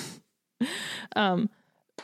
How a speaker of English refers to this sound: Excuse me. Podcast burp.